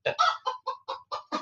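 A quick series of about seven chicken clucks, fairly loud, in a choppy, evenly spaced rhythm with brief gaps between each cluck. No one speaks.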